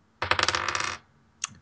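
Dice rolled for a notice check, coming up 4, rattle and tumble across a hard surface in a quick burst of bright clicks lasting under a second, followed by one last sharp tap as they settle. No voices.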